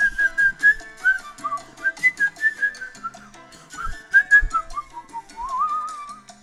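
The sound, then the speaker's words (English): Someone whistles a lilting melody, the pitch sliding and wavering between notes for several seconds, with faint background noise and a couple of soft knocks underneath. “It's impossible not to whistle.”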